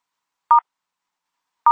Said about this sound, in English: Please press the star key on your phone twice now.